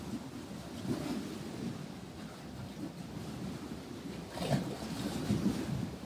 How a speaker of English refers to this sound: The big lake. Just taking a few moments here and now to feel into the rhythms, the sounds, the energy of this great living body of water.